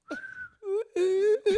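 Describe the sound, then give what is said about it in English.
Someone tries to whistle like a referee: a thin, steady whistled tone, then three hummed, voiced bursts imitating the whistle, the middle one long and level, the last short. “That's the best I can whistle right now.”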